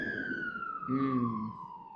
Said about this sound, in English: The police siren. Oh my god, it's so loud. It's so loud, we'll just let that pass.